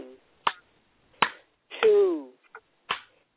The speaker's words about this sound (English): So 1, 2, 3, I'm going to ask you to clap 3 times, and we will release ourselves from the energy love clap. So that's 1, 2, 3, let's clap 3 times.